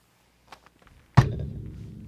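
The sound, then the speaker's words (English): A door is shut with a single solid thud, preceded by a few faint clicks and shuffles of the handle, the low boom lingering briefly afterward. “Hey, wee lass, would you mind closing the door? There's a bit of a draft, please.”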